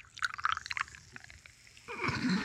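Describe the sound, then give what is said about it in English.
Crackly fizzing of tiny bubbles in a poured drink popping in quick irregular bursts, then a louder, steady pouring rush with a low gurgle as more drink goes in. No voices. “So you can hear the bubbles.”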